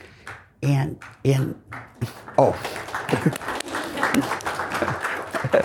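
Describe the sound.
A voice speaks briefly, then audience applause breaks out and keeps going: a dense, steady wash of many hands clapping at a moderate level, with a few voices mixed in.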